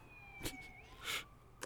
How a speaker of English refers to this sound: Sirens are on our end.